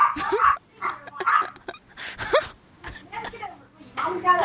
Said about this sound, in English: And now the dog can chime in too.